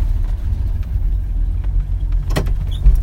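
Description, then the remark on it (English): A car's exhaust gurgles in a steady, low, throaty rumble while driving on the road, with a brief sharp click or rattle partway through and no voices. The exhaust runs from the head pipe back to the muffler and exits out the side, right behind the doors. “I just love the gurgle. The exhaust on these were unique.”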